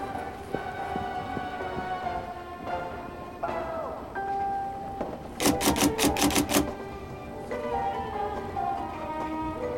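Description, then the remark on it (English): A short, quick burst of about half a dozen sharp typewriter key strikes as a woman starts typing on forms and immediately stops, surrounded by voices talking before and after. “And she just starts typing and immediately stops.”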